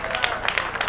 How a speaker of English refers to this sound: Oh, the hand clap. I don't hear no heavy hands. I should have some heavy, heavy man hands clapping on that.